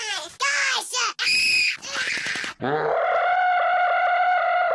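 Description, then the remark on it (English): Someone imitates the shrill, high-pitched scream of a redhead guy from 2006–2007 YouTube videos: a few choppy, wavering shrieks, then one long sustained screech held to the end, loud with no other sounds. “Because this is, I mean, the stuff on YouTube in 2006, 2007 was like, you look at it now and it seems weird, or, you know, like there was this like redhead guy who used to scream.”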